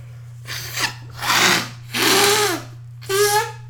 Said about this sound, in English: sorry, I gotta blow my nose again. All this talking, this shit is, I'm really, my nose stuffed up.